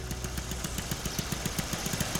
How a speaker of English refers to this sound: The humming song of next door's lawnmower draws the children's attention